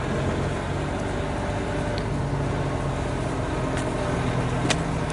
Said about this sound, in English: And you guys, excuse me, there's some tractor truck. I'm over here by the ball field.